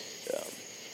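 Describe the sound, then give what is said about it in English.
Real crickets chirp outdoors at night around 8 o'clock under an overcast sky, a thin, steady high-pitched trill hanging faintly in the background throughout, with a brief low murmur early on. “Those are real crickets. I didn't pop those in.”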